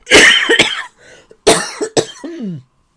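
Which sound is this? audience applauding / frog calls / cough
cough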